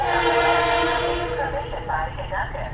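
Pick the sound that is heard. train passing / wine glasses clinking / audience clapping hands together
train passing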